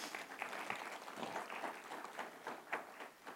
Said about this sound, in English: Give this team a round of applause.